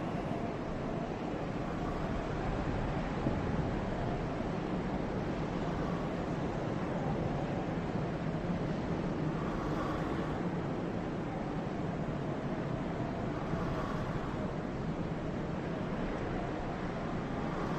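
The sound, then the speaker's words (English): A steady, dense roar of falling waterfalls in a video game's ambient soundscape fills the scene at an even loudness throughout, a continuous outdoor wash of sound with no voices. “But yeah, there's a kind of like ambient sort of sound going on. There's like waterfalls going on in there. There's kind of the chirp of crickets, I think.”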